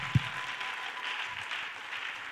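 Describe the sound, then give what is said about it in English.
An audience clapping their hands in worship of the Lord, a dense, steady wash of many overlapping claps that swells slightly now and then, with a single low thump near the start and no voices. “You ought to clap your hands unto the Lord and worship him, because he's a good God.”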